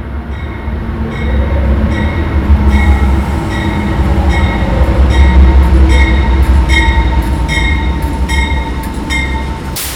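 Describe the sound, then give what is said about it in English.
A train, which people are about to ride with their bikes, rumbles steadily, with heavy low-end roar and repeated high metallic clicks and squeals from the wheels on the rails throughout; no one speaks. “So we're about to ride on the train with our bikes.”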